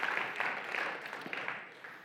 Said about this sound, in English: So let's give God a clap for that, that many people went on an international mission trip.